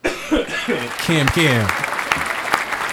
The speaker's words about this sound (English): Give the cameraman a round of applause.